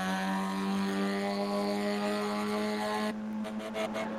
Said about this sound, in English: Right on the limit of that little four-cylinder Audi, screaming away as they head up the hill. The modelling of the engine noise in all of these cars and the transmission noise, absolutely outstanding.